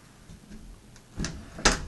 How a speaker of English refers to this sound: Okay. Wow, these are really old doors.